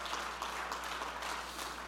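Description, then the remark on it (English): A crowd claps their hands together in praise in a steady, dense patter of many overlapping claps, fairly soft and continuous throughout, with a faint low hum underneath and no voices. “Oh, clap your hands and praise him.”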